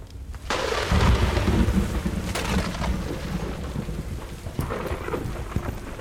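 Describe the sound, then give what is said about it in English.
Heavy rain pours steadily while a deep rumble of thunder rolls in loudly near the start and slowly fades, with a few sharper cracks later. No voices are heard. “The storm was well and truly upon the manor by the time he reached his brother's home.”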